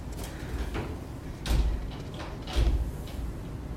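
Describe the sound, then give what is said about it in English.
A wood-and-glass door is pushed, giving a faint rattle followed by two heavier thudding knocks about a second apart, with a low rumble underneath and no talking. “If you can push from the wood rather than the glass, I think we'll be in better shape.”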